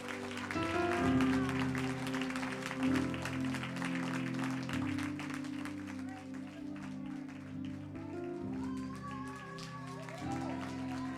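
A crowd at a worship service claps steadily and continuously as a clap offering to the Lord, dense overlapping hand claps layered over sustained low organ or keyboard chords, with some voices faintly rising through the applause.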